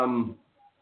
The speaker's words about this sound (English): Wish this cat would shut up.